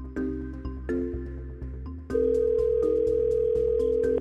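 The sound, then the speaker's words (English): A helpline phone's electronic ring sounds alone, starting as a pulsing pattern of tones and then rising into a louder, steady, sustained tone that carries on to the end. “The phone's going to ring again.”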